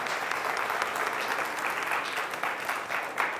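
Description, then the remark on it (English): People at a church service clapping their hands together for God in steady, dense applause, sustained at an even level for a few seconds with no one speaking over it. “All right, give God a hand clap.”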